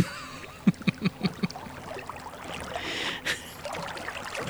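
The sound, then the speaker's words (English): Five quick, evenly spaced oar strokes splash and knock as a boat is rowed at sea back toward shore, then water keeps sloshing and washing around the boat. One more splash comes near the end. No one speaks. “I'll row the boat. I'll get us back to shore.”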